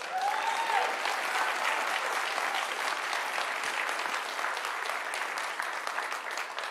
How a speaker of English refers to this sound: How many of you know that you have gifts from God right here? They're pastors. Amen? Amen. Amen. Just a good opportunity for you just to clap real loud.